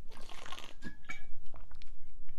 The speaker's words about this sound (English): And cheers to that. I'm taking a sip of water.